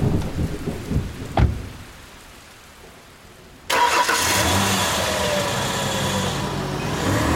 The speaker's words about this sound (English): Okay, you guys are also, all of you guys are just soaked to the bone now with how long you've been out in the rain. And you guys are getting, it's just freezing.